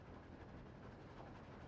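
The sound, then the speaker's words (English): Train wheels rolling along the tracks make a steady, low rumbling clatter that continues without a break. The sound is fairly quiet and there is no talking. “Elmo likes hearing the train wheels click clacking on the tracks.”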